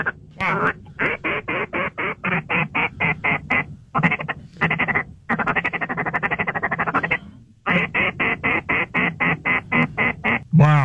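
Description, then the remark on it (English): A rapid series of loud, nasal quacks from a duck call, blown in fast rhythmic bursts with brief pauses between runs, dominant with no talking over them. “You definitely can duck call a lot better than I can, man.”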